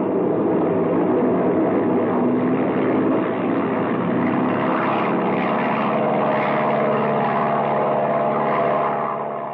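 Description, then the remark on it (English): A propeller airplane engine drones steadily and loudly throughout, a thick, rumbling roar with a faint pulsing throb and a slight swell in intensity partway through. No voices are heard. “Yeah, we're liable to collect more than a hole in the wing if you don't get this baby airborne soon.”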